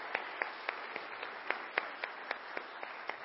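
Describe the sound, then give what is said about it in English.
A church audience applauds two couples and their families in a steady wash of clapping, with one pair of hands cracking out sharp, evenly spaced claps above the crowd. Moderately quiet, and no one speaks. “How about a big round of applause for these two couples, these families?”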